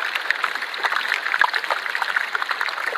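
Dense underwater crackling and popping from a melting iceberg as gas bubbles out of the ice, a constant fizz of tiny snaps and clicks with one sharper pop, steady and busy throughout, no voices.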